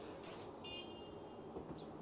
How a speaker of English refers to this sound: That's a double honk right there. Honk, honk.